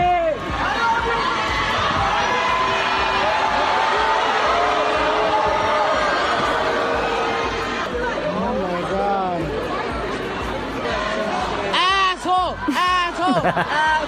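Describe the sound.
A large crowd roars and chatters continuously, many voices shouting "Asshole!" together; the din stays loud throughout, with rising, wavering yells bursting out toward the end.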